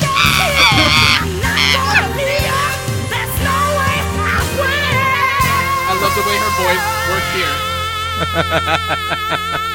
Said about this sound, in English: People scream here. People are cheering at this point.